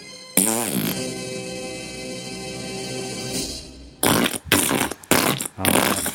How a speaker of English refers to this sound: Oh, what fart was really a good one?